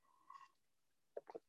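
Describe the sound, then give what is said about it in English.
A brief, thin slurp as someone sips water, followed by a quick cluster of two or three soft gulping swallows, quiet and with no talking. “Okay, one sip of water, I'm gonna get into it.”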